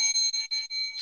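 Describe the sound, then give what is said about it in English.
A small bell rings repeatedly with a bright, sustained metallic tone, struck several times in quick succession over about a second, fairly loud with no voices present. “I hit the bell.”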